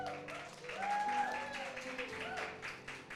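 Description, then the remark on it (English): A studio audience at the Elite HQ, during a live service, breaks into a round of applause lasting about three seconds, steady dense clapping mixed with cheering voices and a few rising whoops over the top. “And if you're in the studio with me, because I have many people around, I need you to give a round of applause.”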